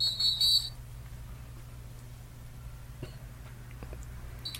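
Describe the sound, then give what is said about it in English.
A short, shrill whistle toot opens, followed by a steady low hum with faint clicks, then a brief weak whistle chirp right at the end. “He lost his whistle.”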